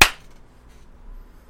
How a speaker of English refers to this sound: So, let's do the clap, I guess. Cheers. All right. One, two, three.